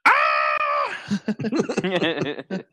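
A man lets out a loud, sustained scream into a gun for about a second, then breaks into rapid, choppy vocalizing that sounds like excited talk.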